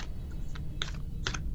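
A deck of cards being shuffled for a tarot card reading: a few short, crisp papery bursts of clicking cards in quick clusters over a low, steady background hum, with no one talking.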